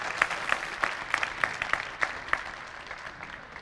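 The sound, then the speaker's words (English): An audience at Saving Grace Church applauds the orchestra and band in the evening, a dense wash of many hands clapping with a steady, regular beat running through it, even in loudness, with no one speaking. “Can we give the orchestra and the band a round of applause?”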